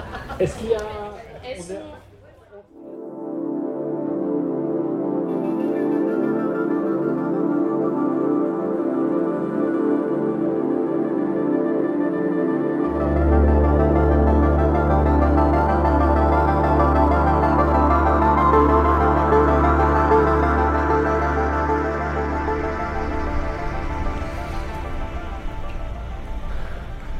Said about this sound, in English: That sound you can hear is an air-conditioned train sitting at Evian-les-Bains station